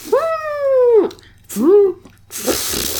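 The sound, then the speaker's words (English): A person imitates an elephant's trumpet: a long, loud, nasal cry that bends down at the end, then a shorter second blast, followed by a breathy rush of air. “Can you do a good elephant sound? I'm an elephant.”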